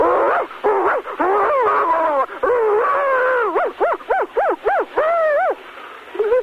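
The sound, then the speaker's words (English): A person imitates a barking dog for Sacramento's canines, on a count of three, with a run of drawn-out, howling woofs, then a string of about half a dozen separate rising-and-falling yelps, loud and with a thin, telephone-like tone. “We want you to give it, just bark your heart out for Sacramento's canines, okay?”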